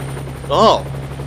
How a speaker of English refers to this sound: Actually, you see this helicopter here above us? Yeah. With the big net? Yeah. Look in the net.